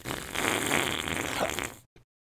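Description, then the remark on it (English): Someone blows a fart noise with their mouth: one long, buzzy, sputtering blat lasting nearly two seconds, fairly loud, followed by a brief final splutter. “I made a fart noise.”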